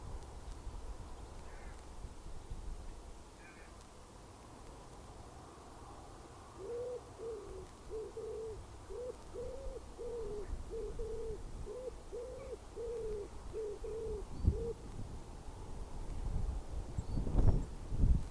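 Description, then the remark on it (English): Several different kinds of birds calling outdoors: a steady run of about a dozen soft, rhythmic hooting notes in the middle, a couple of faint chirps earlier, all over a low wind rumble with no talking. “I don't know if you can hear, but there's actually quite a few different kinds of birds singing there.”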